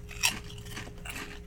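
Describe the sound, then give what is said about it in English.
A Calbee hot and spicy potato chip is bitten with one sharp, brittle crunch, followed by a second or so of softer, muffled chewing crackles. Fairly quiet overall, with no voices. “Not the crispiest chip.”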